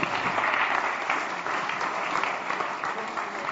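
An audience breaks into a steady round of applause, dense clapping that holds at an even, fairly loud level for several seconds without any clear speech over it.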